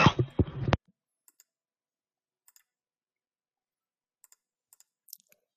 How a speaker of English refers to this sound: All right, sorry, I'm just typing